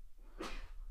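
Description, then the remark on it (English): A single sharp sneeze bursts out in the middle, a brief, loud, breathy explosion of noise with quiet surrounding it. “Oof. Bless you.”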